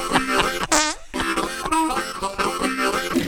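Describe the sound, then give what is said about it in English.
A long, loud fart sound effect plays on its own, a buzzy, flapping blast that wobbles in pitch, squeaks briefly, pauses for a split second, then sputters on for several more seconds. “Man sues Tesco, that's a store, for race discrimination after colleague farted in his face.”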